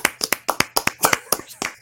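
smattering of clapping

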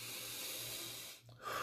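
deep breath

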